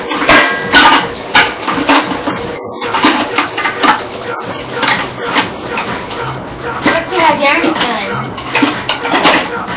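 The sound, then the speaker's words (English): Busy kitchen clatter of pots and pans, metal clanking and knocking repeatedly, with running-water-like noise and muffled voices mixed in throughout, as food is prepared for a big breakfast of grits, bacon, eggs, sausage and potatoes. “Chopping pots and pans all over the place. Getting ready to prep some food in the kitchen.”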